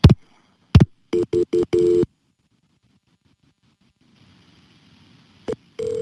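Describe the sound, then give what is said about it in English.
Telephone line tones as a 911 call about an attempted break-in in Harrison Township, Mullica Hill, New Jersey is transferred to the police: a couple of sharp clicks, then a quick run of four evenly spaced electronic beeps, a stretch of faint line hiss, and another tone starting at the end. “Let me get the police on the phone.”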